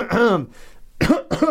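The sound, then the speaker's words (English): A person in an elevator imitates coughing, making a drawn-out throaty sound followed by two short, harsh coughs after a brief pause. “They could feel me cough in the back of their head, and they don't move at all.”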